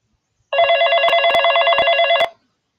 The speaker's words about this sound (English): As soon as her mom started to say something, Sophia's phone went off.